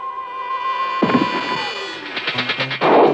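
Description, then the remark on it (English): A steady high tone gives way to a sharp burst, then a quick, even run of typewriter key clacks, ending in a louder rushing noise. No one speaks. “That must be the typewriter we heard.”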